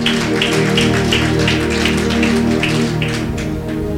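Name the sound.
audience clapping hands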